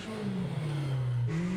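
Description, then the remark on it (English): A UTV engine revs hard, its exhaust rising and falling in pitch, then climbing again near the end; the sound is loud, with no talking over it. “How's the exhaust note on that thing? Pretty sick. It kind of reminds me of a Kawasaki KRX with a little bit more girth.”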